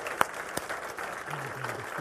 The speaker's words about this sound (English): Let's clap for those folks who gave their heart to the Lord.